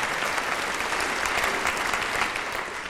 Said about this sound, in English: And a round of applause for you,